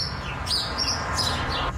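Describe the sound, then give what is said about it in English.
Birds chirp steadily and constantly, with high, bright calls repeating over a constant background hum of outdoor ambience, heard from about 5 a.m. till about 9 p.m. No one speaks, and the birdsong is unbroken. “Allie made me laugh out loud, especially when she was being tortured by some birds”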